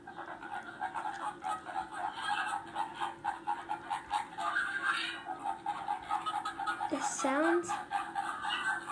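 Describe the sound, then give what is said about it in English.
A dense chorus of bird calls, rapid, repeated, nasal chattering notes overlapping steadily throughout, with one louder swooping call rising and falling near the end. “Okay, it's a type of bird, yeah.”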